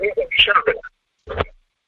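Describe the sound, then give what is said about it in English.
Thin, telephone-quality speech from a caller's line, followed after a brief silence by a shorter, fainter repeat of the voice, like a slapback echo on the connection. “We're getting slapback echo on you wildly.”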